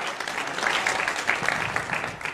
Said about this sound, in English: Clap your hands today if you've seen him do it before.